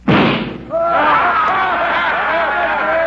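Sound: pistol gunshot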